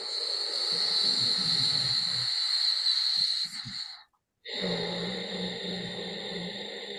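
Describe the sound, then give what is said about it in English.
Steady, breathy hissing swells over several seconds, like a slow ocean-like breath with a soft throaty rasp, then cuts to a brief silence before another long, smooth breath begins. “A smooth sound like the sound of the ocean.”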